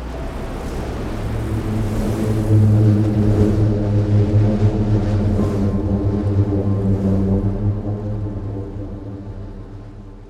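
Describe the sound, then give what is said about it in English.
A booming sand dune avalanche: a deep, steady droning hum with stacked harmonic overtones, like a low engine or organ note, swelling slightly and then easing off, with no voices. “Sometimes this happens spontaneously when the wind picks up and creates these mini avalanches.”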